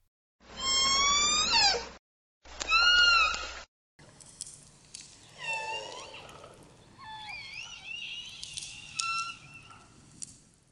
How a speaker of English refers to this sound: Orca communicate with calls, clicks, and whistles. Some calls are common between the three pods, but JK and L pods also have their own unique dialects.